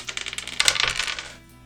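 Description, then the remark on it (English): A small six-sided die (D6) rolled during a dice game clatters across a hard tabletop in a quick run of sharp ticks that crowd together, then tumble to a stop after about a second. Fairly quiet, with no voices. “All right, you can roll your D6.”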